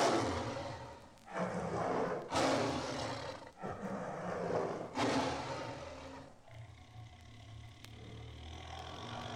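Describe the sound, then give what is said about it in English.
A Bengal tiger growls and roars in several loud, rough bursts, each swelling and fading, then gives way to a quieter low rumble near the end. “This is the fearsome growl of the Bengal tiger.”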